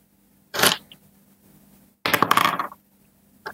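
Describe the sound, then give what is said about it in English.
Dice clatter across a hard tabletop in two separate rolls, each a short burst of rattling clicks, with quiet pauses between and no one speaking. “Your dice are amazing.”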